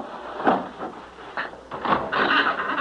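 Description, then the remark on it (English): A wooden bolt that fastens the door of an abandoned building scrapes and clunks as it is pushed open, followed by a few rough sliding and rattling movements of the old door, with no voices. “Now, come on, I'll push open this wooden bolt that fastens the door.”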